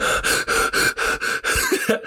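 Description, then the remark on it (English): A person makes rapid, heavy gasping pants, about seven harsh breaths in quick succession, imitating someone struggling to catch their breath after being hit, with no words spoken. “And for those of you who've been hurt, you know, like when you get hurt and you get hit or something and you start breathing, your wind changes. You got to like catch your breath differently.”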